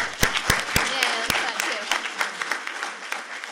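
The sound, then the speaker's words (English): An audience at the end of a talk on a science program for urban natural resource planning and management breaks into applause: a few sharp, separate claps at first, then a dense, steady patter of many hands clapping together that eases off slightly toward the end. “Questions? Clapping?”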